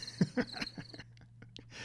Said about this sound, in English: There's going to be some loud crickets.